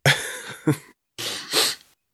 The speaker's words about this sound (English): Sorry, I'm trying to get rid of these sniffles.